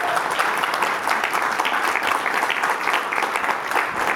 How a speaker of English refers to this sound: So round of applause